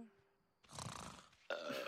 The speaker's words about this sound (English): Anytime they do Barney's burp sound, it gets me. I love it.